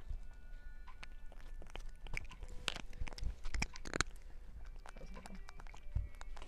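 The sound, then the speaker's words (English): A cat wearing a cone collar chewing dry treats, with a few sharp irregular crunches breaking through a steady low background, quiet. “Damn, she's not really getting the crunches.”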